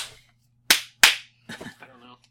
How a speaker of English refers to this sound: The clapping shall continue for 1 hour. The first person to stop clapping shall be executed on the spot.